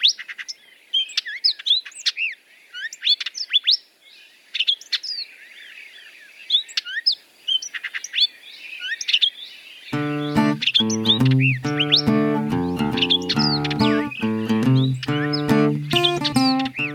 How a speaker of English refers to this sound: Bird of the episode this go-round is the hooded oriole, one that I have seen fairly frequently from my patio here in the northern reaches of the Phoenix Metro.